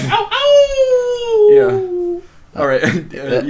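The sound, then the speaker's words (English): A person lets out a drawn-out, wavering howl, imitating a wolf, the pitch sliding slowly downward for about two seconds before breaking off into quick chatter. “This guy looked like he thinks wolf whistling is just actually howling.”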